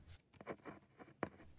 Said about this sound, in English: The pen glided on the crisp paper as he constructed this letter to be sent to people near and far, to nations and those who speak every language in all the world.